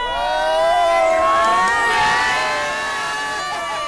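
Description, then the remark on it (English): A big, thick tournament crowd on a sunny day cheers and shouts continuously, a dense wall of many voices with wavering pitched yells and whoops, loud throughout, easing slightly toward the end. “The crowds we just passed through at the moment.”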